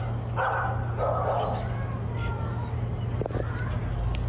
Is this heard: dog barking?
yes